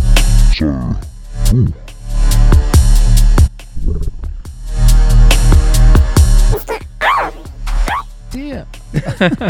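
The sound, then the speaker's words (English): Loud vocal yelps and bark-like calls drenched in a heavy echo effect from a Pioneer DJ XDJ RX2 DJ system, each sound repeating and trailing off in quick, stuttering repeats that smear together. “So it's taken two series and episode 11 for us to work out where the echo button is.”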